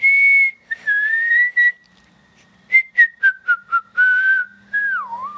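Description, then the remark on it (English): Children whistle a short, bouncy theme tune. Sustained notes give way to a run of quick, separate staccato notes, then a sliding finish, clear with no talking. “Our theme music sounds a little different today because you are the ones whistling it.”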